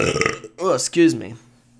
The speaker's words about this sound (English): I was like, am I going to get that burp in there? Yeah, I'm going to keep the burp in there because that shit was sexy.